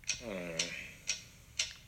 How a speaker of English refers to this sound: What is that mysterious ticking noise?